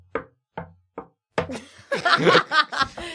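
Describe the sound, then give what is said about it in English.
A rhythmic secret knock: four sharp raps on a door, spaced in a deliberate pattern, followed by people bursting into laughter. “Very convoluted secret knock.”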